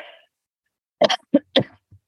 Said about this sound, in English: Oh, I've got a cough. Hold on one second. I'm sorry.